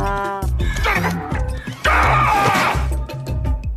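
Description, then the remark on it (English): A loud donkey bray: harsh, wheezing cries that rise and fall in pitch, breaking into a rougher, noisier blast partway through, with no talking. “Get over here, you jackass.”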